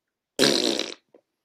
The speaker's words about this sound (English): And just as you're about to do whatever you're doing, he releases a gigantic fart.